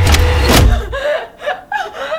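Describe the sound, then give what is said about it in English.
Smart-house door locks disengage with a loud mechanical clunk and rumble, a sharp snap in the middle, followed by a few seconds of faint voice-like sounds. “Doors unlocked.”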